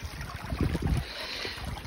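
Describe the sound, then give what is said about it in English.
Water trickles steadily in a stream during a climb near an old ruined miner's village, a soft continuous wash with low gusts of wind buffeting the microphone partway through. No one speaks. “The water's trickling away. Can you hear it?”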